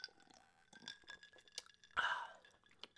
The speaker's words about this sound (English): I'm fighting it with the best medicine known to man, which is a combination of Orange Crush and Southern Comfort. I'll take a little sip right now of my medicine.